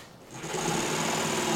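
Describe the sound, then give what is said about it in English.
A power saw spins up and cuts wood for the frame of a homemade air car with a steady, buzzing whine that holds level to the end, with no voices. “It seemed safest to let my dad handle all the sawing.”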